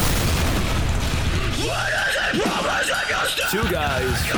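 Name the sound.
explosion sound effect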